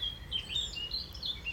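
Birds sing and chirp outside a retreat cabin on a cloudless summer morning, a string of short, high tweets from a few birds over a soft, steady low rumble of ambient background.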